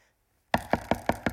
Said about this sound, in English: Knock at the door. And there's a man who's standing at the door. He's a baker.